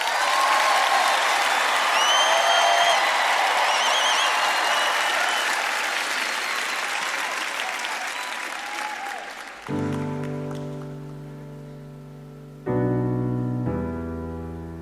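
Loud applause with cheers and a few whistles from an audience greeting a performer in the musical Everybody's Talking About Jamie fills the first ten seconds, then fades as sustained piano chords begin, struck a few times in slow succession.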